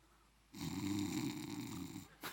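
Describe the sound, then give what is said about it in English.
A single loud, drawn-out snore rumbles for well over a second, raspy and throaty, followed by a brief quieter catch of breath at the end. “Do you ever wonder if Jesus snored?”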